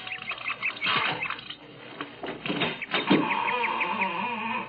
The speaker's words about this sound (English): A creaking door, just the right Victorian touch.